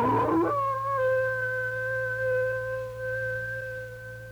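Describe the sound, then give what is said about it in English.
An old wolf that sounds like a big one howls in one long, steady, drawn-out note that holds its pitch for several seconds, heard alone over a low background hum. “Bill, listen to that old wolf out there. Sure sounds like a big one.”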